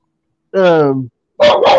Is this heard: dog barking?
yes